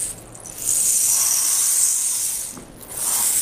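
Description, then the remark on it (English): A rain sound effect made to go with a story: a steady, bright hiss like falling rain that swells after a moment, dips briefly near the end, then picks up again. “So sounds like the sound of rain.”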